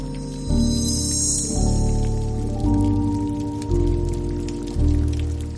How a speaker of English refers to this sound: The family retreated inside as large snowflakes strangely converted into a cold, damp rain, causing several tree lights to flicker.